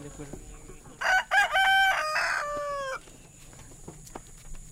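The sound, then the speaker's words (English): A rooster crows loudly, one long drawn-out call with harmonic bends, over a quiet outdoor background with faint clucks and rustling before and after, at a refugee community garden in Comer, Georgia, on a hot Saturday afternoon while chickens, hens, goats and ducks are being fed. “Moopaw is feeding her chickens, hens, goats, and ducks.”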